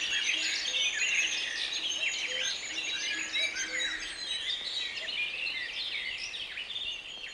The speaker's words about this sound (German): Im Frühjahr erfüllen Ruf und Gesang unserer Vögel Garten, Park und Wald mit einem vielstimmigen Konzert von Innigkeit und Wohlklang, das wahrhaft geeignet ist, ein empfängliches Herz zu erfreuen, ja zu beglücken.